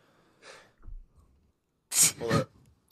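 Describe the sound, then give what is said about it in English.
A soft breathy intake, then a loud, abrupt sneeze in two quick noisy bursts, followed by quiet. “It's a sneeze.”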